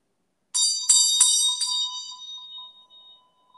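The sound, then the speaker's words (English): A meditation bell is struck a few times in quick succession, its bright metallic ringing swelling and then slowly fading away over a few seconds, with no voices. “so that when I ring this bell in just a minute, you can appreciate the way it reverberates and sit in our space for a little bit.”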